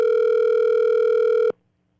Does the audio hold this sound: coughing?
no